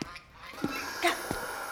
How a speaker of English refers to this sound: Oh, no. Six geese. Six? Ow. Angry geese. Come on. Why are they so angry?